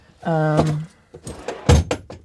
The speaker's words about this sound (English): She walks down the hall and goes into her dad's bedroom, starts opening drawers in the bureau.